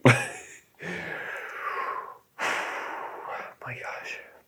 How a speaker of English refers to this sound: It's a lot of puffing and panting this week